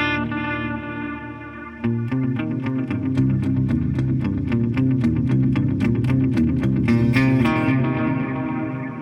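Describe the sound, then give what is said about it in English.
Electric guitar played through a Screamer overdrive pedal and a Halo echo pedal, plus delay and reverb from a Caverns pedal, plays sustained, effects-heavy chords with a repeating echo that sweeps and swirls in a flanging way, growing fuller after a couple of seconds and ringing steadily throughout, with no voices. “Of course, the echoes is flanging because that's what it does, and it's one of the things it does.”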